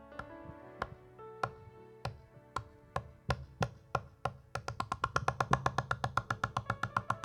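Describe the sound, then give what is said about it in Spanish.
Knocking on a door that starts as spaced, steady raps and then speeds up into rapid, insistent pounding, with a soft sustained tonal hum underneath. “Jesús dijo que es como el amigo que toca la puerta.”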